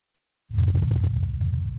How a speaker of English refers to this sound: That's the Martian wind blowing past the microphone on Percy, on the arm.